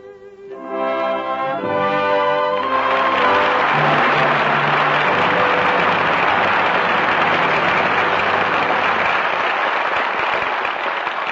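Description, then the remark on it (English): A held musical chord rings out for a couple of seconds, then a large audience breaks into loud, steady applause that continues evenly to the end without voices, calling back five stars, Walter Pidgeon, Donald Crisp, Maureen O'Hara, Roddy McDowell and Sarah Allgood, after their performances that night. “Applause calls back five stars, who gave five brilliant performances tonight.”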